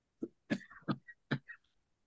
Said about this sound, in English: Don't mute it. Just cough. No, I'm gonna cough a lot then.